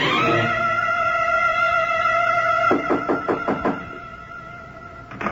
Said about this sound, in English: Wait a minute, I'll buzz the door for you. Come on up.